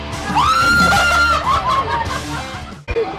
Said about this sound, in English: That's the loudest I've heard you scream.